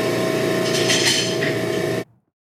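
A loud vacuum aspiration machine used in an abortion procedure turns on and runs with a steady, dense electric drone and a whirring, hissy upper layer for about two seconds, then stops abruptly into silence. No voices are heard.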